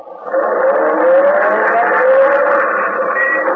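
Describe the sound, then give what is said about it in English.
A car engine roars to life and revs steadily as the vehicle pulls away, its loud hum climbing gradually in pitch for a few seconds with no voices. “Then start the car and drive until I tell you to stop.”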